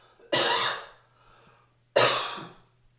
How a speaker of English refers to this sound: I told you I'm sick. Was I lying? I mean, you think that cough was out of nowhere? I am fully under the weather.